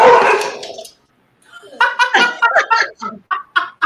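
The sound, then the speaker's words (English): A dog barks: one loud, harsh bark, a short pause, then a quick run of about eight sharp, high barks in a steady, excited rhythm. “That's timing. Because I was about to say, see, this is why I love my job. I was about to say somebody dogged you out.”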